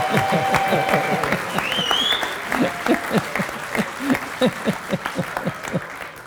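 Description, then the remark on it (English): A crowd claps enthusiastically, dense rapid hand claps filling the space, with a few whoops and cheers rising over the applause before it loosens into scattered, thinning claps. “Listen to this applause, it's for you.”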